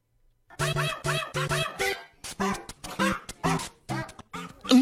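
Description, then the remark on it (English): The speaker's female pet dog barks repeatedly in a quick, uneven series of sharp, loud barks, with short gaps between them and no one talking. “My dog. It's just the craziest thing. She has her own segment on the show these days.”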